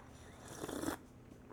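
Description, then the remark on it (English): A single quick sip of hot tea: a short, breathy slurp lasting about half a second, soft and airy, with quiet stillness before and after and no one talking. “I got to take a sip of tea.”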